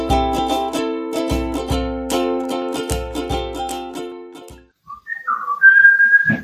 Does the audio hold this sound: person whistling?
yes